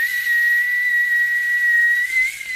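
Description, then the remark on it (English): A steady, high-pitched whistle holds one shrill tone for over two seconds, loud, mimicking a tea kettle with a faint airy hiss beneath it and no talking. “Like a tea kettle.”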